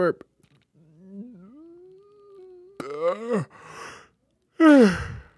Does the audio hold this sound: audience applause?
no